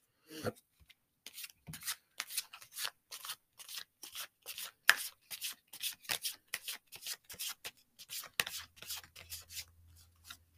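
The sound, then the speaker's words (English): A deck of cards being shuffled by hand until it feels time to stop and pick a card, fairly quiet, with repeated short bursts of riffling and rubbing in an irregular rhythm, no voices. “If not, keep shuffling your deck until you feel that it's time to stop shuffling and pick your card.”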